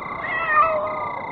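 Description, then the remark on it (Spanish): A single drawn-out kitten meow, fairly loud, with a slightly rising then falling tone, heard on its own without any talking. “El gatito mira concentradamente hacia el vacío infinito de la obscuridad que trae la noche.”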